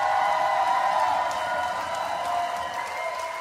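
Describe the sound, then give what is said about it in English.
A crowd gives black women a round of applause for Buy From a Black Woman Month. The clapping is steady and loud, dense clapping blending into a continuous wash of sound with faint cheers, holding at an even level throughout. “The Most High knows the Democratic Party owes black women a whole round of applause and then some.”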